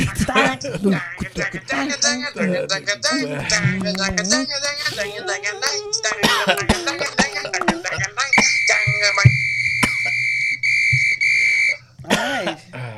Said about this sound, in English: Between the whistling and the coughing.